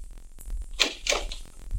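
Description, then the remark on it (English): A door at the other end of a room opens with two quick, rasping bursts in close succession, like a latch and a creaking swing, against a low background rumble, with no one speaking, as a tall man steps in. “A door opened, the other end of the room, and the giant Sudanese stepped in, red fez, baggy pants and all.”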